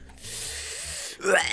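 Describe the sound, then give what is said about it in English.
A man coughs and gags on a cigarette: a long, raspy, breathy wheeze followed by a short, strained, choking burst of voice. “He's coughing on the cigarette. He's gagging.”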